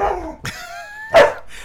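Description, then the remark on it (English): A dog vocalizes: a short whining, tonal cry that slides along, then one loud, sharp bark near the end. No one speaks. “I'm getting attacked by my idiot dog.”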